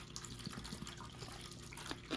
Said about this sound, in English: Let me get a swig of water. Just a swig, y'all. Sorry for this.